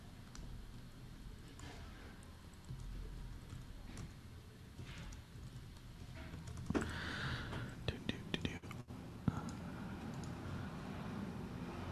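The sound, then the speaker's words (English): A low, steady motorcycle engine rumble hums in the background as a motorcycle drives by, swelling a little partway through, with some faint whispery murmuring and a few brief clicks over it. “Yeah, it's the motorcycles in the background that I'm hearing in my headphones, and I'm like, oh.”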